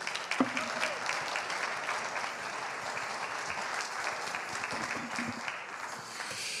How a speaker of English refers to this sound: Good morning. Let's clap that out for Jesus, huh?